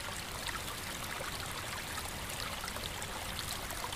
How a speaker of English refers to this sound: Continuing down the hill, you catch the sounds of rushing water.